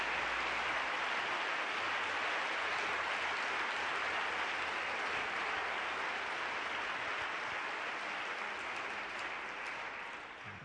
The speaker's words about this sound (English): And not to mention the funding and financing of this great meeting, and all we have to do is come and enjoy it. I think they deserve a real good round of applause.